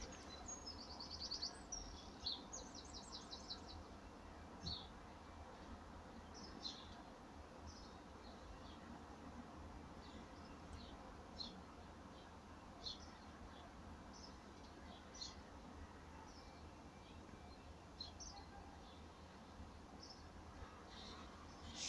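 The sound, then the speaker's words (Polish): Faint, scattered bird calls and short chirps of various kinds, with various owls hooting, drift over a steady low background hum in the quiet before dawn, with no one talking. “Proszę posłuchać, jakie ptaszki rozmaite i sówki różne tutaj hukają.”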